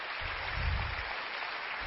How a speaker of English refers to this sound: Thank you, brother. You give him a round of applause, guys.